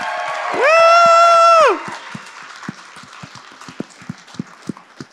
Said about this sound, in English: you better fucking applaud right now for this guy.